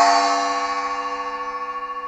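A single gong strike rings out alone, bright and metallic, with a long shimmering decay that pulses gently as it fades.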